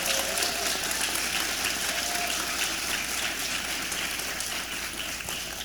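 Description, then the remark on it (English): A crowd applauds all of the nominees at the 2015 Women on the Move evening, steadily, a dense wash of many hands clapping at an even, sustained volume throughout, with no voices standing out. “Before we announce the inductees, let's give a round of applause to all of the nominees this evening.”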